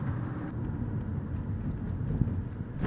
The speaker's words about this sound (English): I had some shit I wanted to talk about, but now, of course, now that I'm in the car and driving and actually got the thing recording...